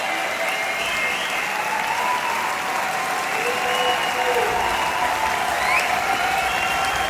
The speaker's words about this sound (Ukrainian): І головний концертний зал в Базель, де було 1300 людей. Це дуже велика кількість людей, повний аншлаг. І люди аплодували стоячи.